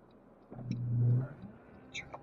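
A car's low engine rumble swells and fades in a small traffic jam downtown in a little town, while driving to school, with faint background noise and a few brief, higher-pitched chirps.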